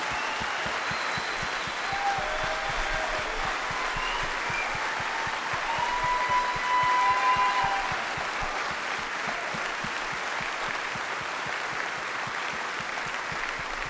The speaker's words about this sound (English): I'd like to recognize these Army guys and gals who are visiting with us today. You guys stand. Everybody give them a round of applause for serving our country.